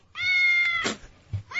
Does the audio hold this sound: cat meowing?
yes